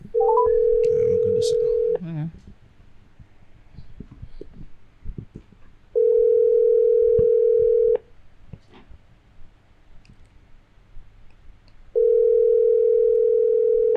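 A WhatsApp call ringing tone: three steady, mid-pitched tones, each lasting about two seconds, separated by quieter gaps of roughly four seconds with faint background noise.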